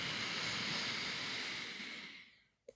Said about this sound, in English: So we're going to breathe in our nose. When your diaphragm is full, exhale slowly. Let's try that one more time. Breathing in your nose.